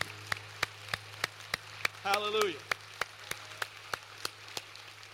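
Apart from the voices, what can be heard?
audience cheering and clapping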